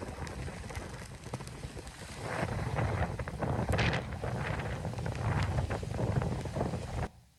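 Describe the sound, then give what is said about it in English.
Stormy wind roars steadily, swelling louder partway through, with rain-like hiss and the wash of rough water around a wooden ship; no voices, ending abruptly. “I'm not sure what kind of boat you need to be on to not be driven by some of those winds in that storm”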